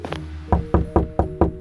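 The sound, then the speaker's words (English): Five loud, evenly paced knocks from a human-skull door knocker on Judge Gladys Ghouly's door, each with a hollow resonant thud, preceded by a couple of softer taps; no one speaks. “Is that a human skull as her door knocker?”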